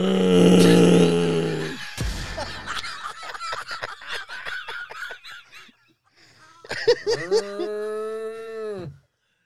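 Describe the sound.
A person does a loud, drawn-out imitation of a cow mooing, followed by a burst of choppy laughter, then a second long, steady moo imitation that cuts off abruptly.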